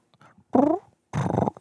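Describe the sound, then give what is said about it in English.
A person's voice imitates a strutting turkey's roar in two loud bursts: first a short, throaty, wavering groan, then a longer breathy, rumbling rush of sound after a brief pause. “And then all you got to do is wait as them old hens get closer and closer, and you can start hearing the roar.”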